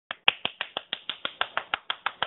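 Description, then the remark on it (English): Hands clapping quickly and evenly, about a dozen sharp claps in a steady rhythm, fairly loud, with no talking. “I'm clapping.”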